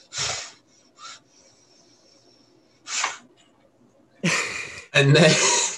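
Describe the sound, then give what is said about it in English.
Someone demonstrates the deep, sharp breaths they take while asleep: a few short, breathy huffs, then two longer, loud rushing inhales near the end, with brief quiet gaps in between. “So like, I would like take a super deep breath in.”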